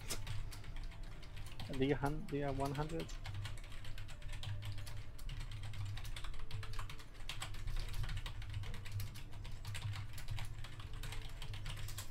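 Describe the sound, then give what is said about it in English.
Steady clicking of computer keys as a message is typed for several seconds, with a brief spoken phrase near the start over a low background hum. “I'm going to send you a message on Discord.”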